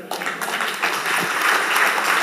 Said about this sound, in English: Now, come on, give Jesus a clap in the house, somebody.